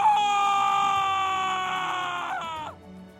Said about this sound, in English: Oh, but His screams of pain from the other side are just so sweet. Your mind is flooded with screams of your father.